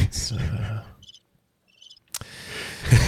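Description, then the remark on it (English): Two brief, faint trills of cricket chirping from a sound effect played by hitting a cricket button, each a quick cluster of high pulses, sounding in a quiet pause with people talking before and after. “This has been a magical experience with crickets in the background.”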